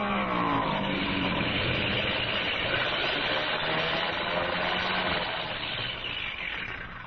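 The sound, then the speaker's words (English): A propeller plane with its engine acting up comes in fast to land, the loud, droning engine roaring steady and throaty throughout, easing off slightly at the very end as if throttling down. “what's the skipper coming back for? Why didn't he follow up the advantage? Well, we'll know in a minute because he's coming in fast!”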